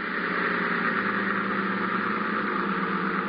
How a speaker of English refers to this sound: That boat coming in is probably Ibarra.